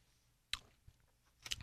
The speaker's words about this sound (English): So I will take another sip.